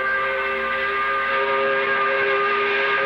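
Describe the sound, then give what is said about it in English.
A loud 5 o'clock quitting-time whistle blows in one long, unbroken blast, its steady chord of tones holding at full strength with no voices over it. “So we blow the 5 o'clock whistle.”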